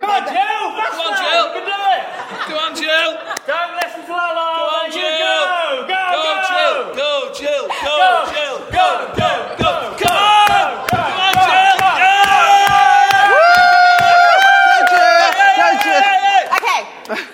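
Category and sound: crowd, crowd cheering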